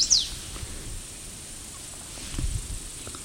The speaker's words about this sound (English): I think a bird that loud would be very obvious with only a couple of trees to choose from.